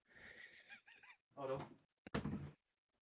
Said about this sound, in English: Let me just close the door, in case it gets really raucous in here.